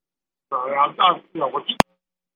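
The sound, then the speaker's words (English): A caller from Florida phoning in to a talk segment comes through a narrow, tinny phone line for about a second, then a sharp click cuts the call off as the caller hangs up, leaving dead silence. “He hung up on us.”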